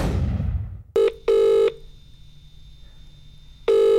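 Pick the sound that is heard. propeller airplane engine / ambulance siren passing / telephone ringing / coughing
telephone ringing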